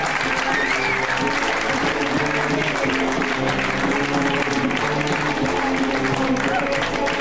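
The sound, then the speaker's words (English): A show audience applauds and cheers loudly and steadily for several seconds as comedian Adam Newman is introduced for his first time on the show, dense clapping filling the sound with whoops and shouts mixed in, a low musical tone sitting underneath. “I know it's been a tough day, but we're gonna go nuts for this next dude because it's his first time on the show too, so we're gonna go nuts, right?”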